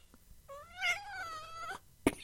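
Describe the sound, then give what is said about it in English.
A single drawn-out cat meow, clear, with a rising then slowly falling tone, followed by a brief sharp click or thump at the end. “let's get one meow in there for shake that cat”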